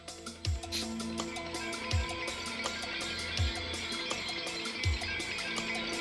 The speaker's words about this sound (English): It sounds like simulated wind chimes. Yeah. Or maybe it's a real wind chimes. I don't know. Knowing him, he found out some clever way to do that in the studio without using actual wind chimes.